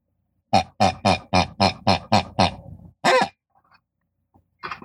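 A rapid run of about eight loud pig grunts in steady rhythm, then a longer squealing oink after a short pause, and one more grunt near the end.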